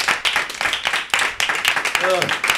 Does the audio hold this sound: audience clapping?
yes